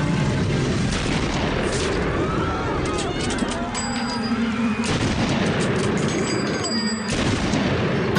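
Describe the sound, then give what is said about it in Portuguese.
Three sharp rifle shots crack out at irregular intervals as President Kennedy's motorcade passes the Texas School Book Depository in Dealey Plaza, Dallas, around 12:30, partly buried in a dense, noisy background of crowd murmur and rumble, with voices faintly audible throughout. “Eram quase 12 horas e 30 minutos quando a comitiva passou pelo Texas School Book Depository e os tiros soaram.”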